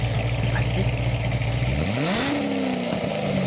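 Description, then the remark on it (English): A Ford Mustang's Coyote 5.0 V8 engine idles with a low, steady rumble, then revs sharply, the pitch sweeping upward and holding at a higher, loud roar before easing slightly. “That's Coyote 5.0. I'm going to guess Mustang.”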